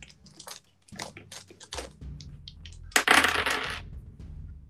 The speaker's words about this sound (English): I still have to roll a few more dice. Sorry, give me a second.